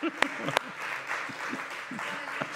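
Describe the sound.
A crowd applauds steadily for a couple of seconds, a dense patter of clapping with a few sharper, louder claps standing out and faint voices mixed underneath.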